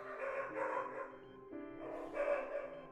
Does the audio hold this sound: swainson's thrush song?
no